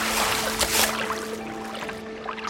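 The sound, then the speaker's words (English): Water pours and splashes steadily for a couple of seconds as a plastic bag full of water is lifted out of the water by a kneeling paddleboarder on Anglesey, a continuous draining gush with some trickling, over a low steady hum. “Okay, and then I've got onto my knees to just lift it out because it's actually really full of water.”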